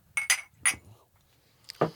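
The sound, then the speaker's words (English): Glasses clink together in a toast, three bright chimes in quick succession, followed by a softer knock and another ringing clink a moment later. “Yeah, it's just like you clink, Canadian friends do it.”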